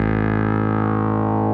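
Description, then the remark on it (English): A loud, sustained bass note with a buzzy, harmonically rich tone, run through an envelope filter, ringing out alone for a second and a half with the filter gently shifting its color. “And then here's envelope.”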